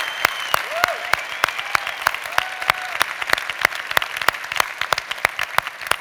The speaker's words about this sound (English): Hey, spiritual teenagers, spiritual infants, take a panoramic view of all of this incredible stuff the mature have given over the years at Fellowship Church. Let's give a crazy round of applause for that.